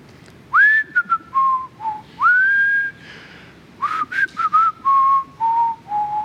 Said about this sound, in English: And it was quiet. And I just couldn't handle it. I was like, this is just getting to me. So without thinking, I started whistling.